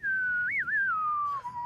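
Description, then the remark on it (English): Someone whistles a short jingle tune, a single clear, sustained tone that wavers and slides gently downward with a quick melodic flourish, steady for under two seconds. “That's impressive to whistle on cue too, just quietly.”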